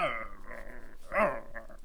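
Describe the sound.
A person imitates a dog's growl, a rough snarling rumble lasting nearly two seconds with a louder, strained swell midway before trailing off.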